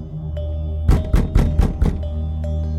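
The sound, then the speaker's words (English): Someone bangs heavily on a front door about 10 feet away, five rapid, loud bangs in quick succession, over a steady low background hum, then quiet again. “Stop hitting my door and get someone.”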